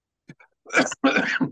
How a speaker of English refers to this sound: Just when I go to speak, I have to cough. It's one of those kind of things.